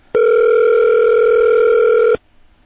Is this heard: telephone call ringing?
yes